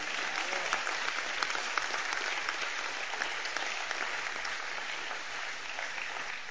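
An audience claps in sustained, dense applause for several seconds, many hands striking at once in a steady, even wash of sound with no voices rising above it.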